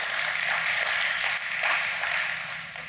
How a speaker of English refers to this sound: Smattering applause if you're curious.